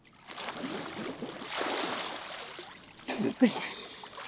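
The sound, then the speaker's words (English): Water sloshes and splashes as people move through cold water and emerge from it, building to a sharper burst of splashing near the end, with faint voices mixed in. “Now we look like Daniel Craig as we sexually emerge from the water.”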